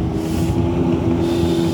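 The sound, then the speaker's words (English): A jet ski passing by, its engine droning steadily, a loud low buzzing hum with layered tonal harmonics and some wind rumble, holding at an even level with no voices. “That's a jet ski passing by.”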